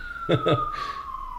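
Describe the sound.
An emergency vehicle siren wails steadily outside in the background, its pitch sliding slowly downward as it passes, while a voice briefly talks over it at the start.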